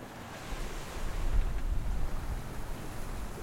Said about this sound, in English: There you go, you got the sound of the sea, hopefully nice and clear in the background. I can hear it on the microphone.